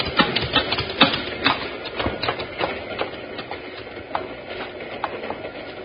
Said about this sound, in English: That's a cattle train, all right.